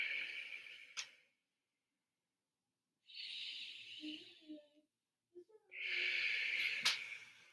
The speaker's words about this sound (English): After a few seconds of breathing, even 30 seconds, you start to hear your own breath and you won't hear anything else.